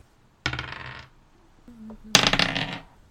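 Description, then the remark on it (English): Dice clatter across a hard surface in two bright, rattling bursts separated by a short quiet pause, each burst skittering for under a second before settling. “Go ahead and roll again.”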